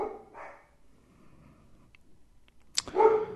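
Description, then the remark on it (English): A big yellow female Labrador gives two short, moderate barks, then after a quiet pause lets out a louder, sharper bark near the end, with no talking. “If anyone would like a big yellow lab who is afraid of her own shadow.”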